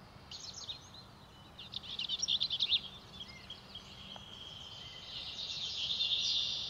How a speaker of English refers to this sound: The name of this little bird comes from a man named Bell, who joined ornithologist John James Audubon on an excursion in the 1840s. It's the smallest subspecies of the Bell's vireo. That's why they added the word least.